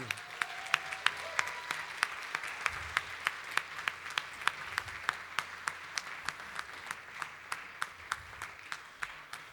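A round of applause for a newly engaged couple: sharp, evenly spaced claps ring out over a steady wash of crowd clapping, keeping a brisk, regular rhythm for nearly ten seconds with no talking.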